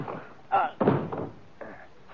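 Two heavy thuds land in quick succession as a man punches another man on the jaw and knocks him to the floor, with a muffled scuffle trailing after.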